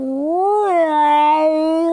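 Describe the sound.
A person imitates the noise of a gray cat and Ren, an older boy cat, fighting: one sustained, wavering, drawn-out moaning yowl that rises, dips and holds steady for about two seconds, loud.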